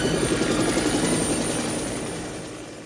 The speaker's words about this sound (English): So that was the chopper came up over the cliff